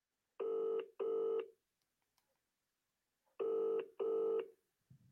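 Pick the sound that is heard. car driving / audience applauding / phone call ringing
phone call ringing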